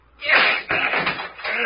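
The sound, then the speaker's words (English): A heavy locked door is battered with a chair and slams open with a loud crash, followed by a second burst of banging and rattling, abrupt with a short clattering tail. “Now then, we'll see how strong that lock is.”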